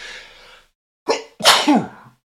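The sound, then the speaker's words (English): A single loud sneeze: a breathy hiss, a short pause, then a sharp catch and a forceful explosive burst that trails off with a voiced tail. No talking. “Sneeze warning. There will be another sneeze.”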